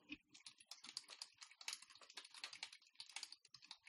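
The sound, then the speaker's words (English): Rapid, continuous clatter of keys being typed on a computer keyboard, a dense run of sharp clicks with no voices. “What are you guys typing right now, or is that from...”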